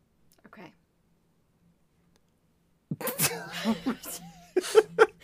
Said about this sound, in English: I was gonna sneeze. It looked like you were passing the fuck out as I spoke. I was trying not to sneeze.